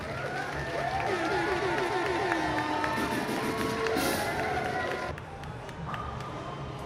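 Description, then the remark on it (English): A crowd cheers and claps in a steady, dense roar with voices shouting over it for about five seconds, then the noise drops slightly and carries on more quietly. “Let's give a round of applause for first of the day, man.”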